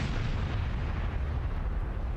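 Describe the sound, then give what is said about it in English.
A bomb explosion sound effect: a loud, continuous rumbling roar heavy in deep bass, holding steady for about two seconds with no voices over it. “Drop a bomb for, I didn't know that.”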